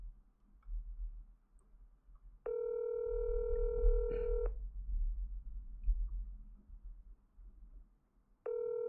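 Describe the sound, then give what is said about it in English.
A telephone ringback tone purrs twice through the line as a call is redialed, a steady two-second ring followed by a long pause before the next begins, over a low background rumble with no one talking. “I can't come to the phone right now, but if you leave a message. We'll try it again.”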